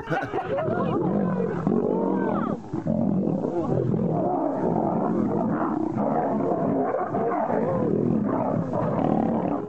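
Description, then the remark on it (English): Two lions roar and snarl at each other in a loud, continuous tussle, deep growls overlapping with harsher bursts, fighting or playing. “Those were two lions, I don't know, fighting or playing”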